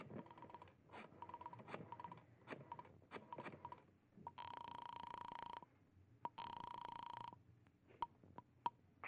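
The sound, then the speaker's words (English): A telephone being dialed in an apartment to call for help about a murder and suicide at the Carlton Apartments, number 308: a run of quick clicks, then two sustained electronic tone bursts with a brief gap between, followed by a few sharp clicks. No one speaks. “You remove your gloves, survey the room quickly, and then you go to the phone.”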